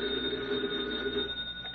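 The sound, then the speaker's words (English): An old-style telephone bell rings at an FBI field office, Special Agent Taylor's phone, in one continuous, steady burst, clear, with a slightly muffled, narrow tone, trailing off at the end. No one speaks. “Meanwhile, the nearby FBI field office, Special Agent Taylor is returning from the file room when his phone rings.”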